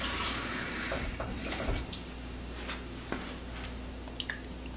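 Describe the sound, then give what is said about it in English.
Water pours into a small plastic diffuser reservoir for about two seconds, a hissing trickle, then stops, leaving a few faint drips and light plastic clicks. “And yeah, so there's a fill line in there. You could add a little more water, but I'm just gonna leave it at that.”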